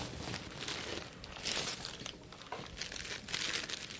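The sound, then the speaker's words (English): Packaging crinkles and rustles as a package is unwrapped, in irregular bursts of crisp crackling that run for several seconds without any talking. “Okay, now it's in a box that I threw a bag.”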